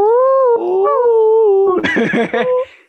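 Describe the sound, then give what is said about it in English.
A voice imitates wolves howling: a long, wavering howl that slides in pitch, then breaks into a burst of rougher, choppy yips before fading, loud. “That shit really does sound like some wolves, though.”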